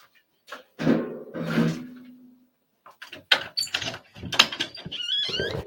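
A door out to the garden is unlocked and opened: two rumbling, scraping pushes, then a quick run of sharp clicks and rattles from the latch, with no one talking.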